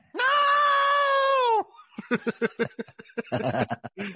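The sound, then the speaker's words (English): A woman in a TV show clip lets out one loud, sustained, high-pitched screech lasting over a second, then her voice continues in rapid, choppy bursts of distressed wailing and talk. “And that's when the screeching reaction happened.”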